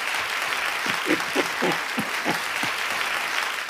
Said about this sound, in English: Gents, congratulations on the 50th episode. Applause, please. There you go.